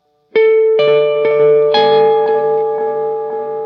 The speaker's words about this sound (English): You can't mess up because then the thing is, when you mess up with the delay in such a long reverb, you don't just mess up once, you mess up for a solid at least 10 seconds.